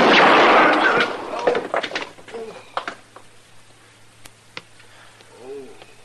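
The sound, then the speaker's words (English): In a chicken coop, a loud, harsh gunshot blast opens as the shot strikes a man's gun, followed by a scatter of sharp clanks and clicks as the bullet hits the metal, then quieter knocks over a steady low hum and a brief soft coo. “I hit the gun.”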